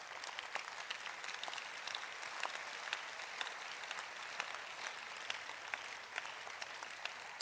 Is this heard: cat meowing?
no